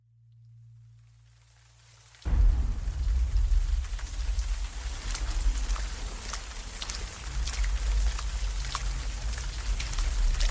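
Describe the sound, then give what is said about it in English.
After a couple of seconds of low, steady hum, a storm's heavy rain bursts in and keeps pouring with crackling droplets over a deep, continuous low rumble; no one speaks. “Chapter 3, The Storm, Part 1.”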